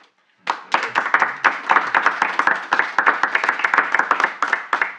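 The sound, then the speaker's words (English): Loud, sustained applause from a baseball broadcast bursts in suddenly after a brief silence as legendary Stan Musial is introduced, a dense crackle of many hands clapping that keeps up steadily throughout, with no talking over it. “Lights fade to the sound of baseball broadcasts as legendary Stan Musial is introduced to thunderous applause.”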